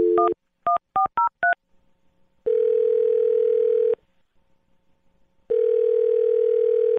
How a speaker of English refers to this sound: I'm going to dial this phone right now, okay? Okay. All right, here we go.